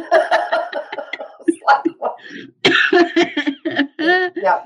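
A run of laughter breaks into harsh, repeated coughing, the bursts coming close together in an uneven fit, loud, with short gasping pauses between.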